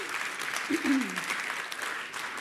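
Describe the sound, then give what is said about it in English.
A church audience applauds the worship team in a steady, dense wash of clapping that holds for a couple of seconds, with a brief vocal cheer rising over it early on. “Let's give our worship team a massive round of applause.”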